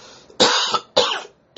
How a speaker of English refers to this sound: Oh, excuse me. And cough.